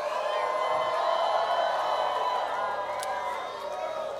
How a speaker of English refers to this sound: Open your mouth and begin to shout the shout of victory in the place of prayer tonight.